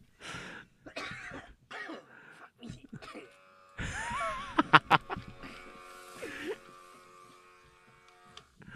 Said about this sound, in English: I swear to God, I don't know why I'm coughing so much.